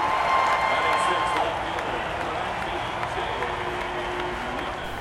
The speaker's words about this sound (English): You jog out to the mound as the crowd cheers. You look into the crowd.